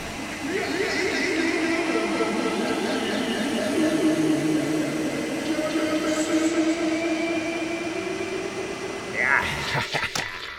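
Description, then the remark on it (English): A vacuum cleaner sucking up ghosts drones steadily, its whining hum wavering up and down in pitch for about nine seconds before a brief sharp burst and rattle near the end. “Oh my god, Fishman is sucking up the ghost with his vacuum.”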